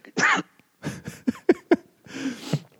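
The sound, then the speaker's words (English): A man's fit of harsh coughing: one rough burst, then a run of short, sharp coughs, and finally a longer, strained hacking spell, loud and with no talking over it. “Well, while he coughs up”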